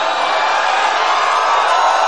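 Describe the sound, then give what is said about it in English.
A large crowd at a presidential rally cheers and whoops loudly and continuously after the president praises a congressman's assault on a reporter, a dense wall of voices holding steady for the full two seconds with no individual speech standing out. “Yet there's the president telling that same crowd of people who cheered the assault of a reporter and the jailing of their political opponent that it's the other side that has turned into the angry mob.”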